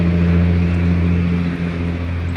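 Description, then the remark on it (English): Loud street traffic, a steady engine roar with a deep droning hum underneath, holding constant throughout with no one talking. “Man, I didn't mean to come down here where the traffic was loud.”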